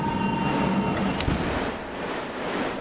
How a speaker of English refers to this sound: His delivery is drowned out by a sudden explosion of wind.